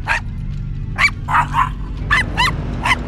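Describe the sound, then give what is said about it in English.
A dog, Sparky, barks on the stairs in a quick series of sharp, high-pitched yaps, about seven in three seconds, over a steady low background rumble. “The dog's going up the stairs.”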